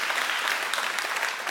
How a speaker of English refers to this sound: So come on, give him the best hand clap. Yes, thank you, Pastor.